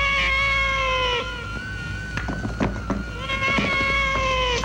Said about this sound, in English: Oh, it's my like, god, yeah, the cat screams are just relentless in this. It's just like meow, meow, meow, meow, meow. It's non-stop.